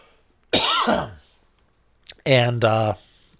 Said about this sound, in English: Excuse me, I'm going to cough.